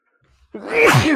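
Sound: sneeze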